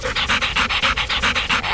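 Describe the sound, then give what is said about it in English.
A dog, King, pants rapidly and steadily right up close to a woman's face, each quick breathy huff repeating in a fast even rhythm, loud with no one talking. “Smelly dog breath. What did you do, have skunk for lunch?”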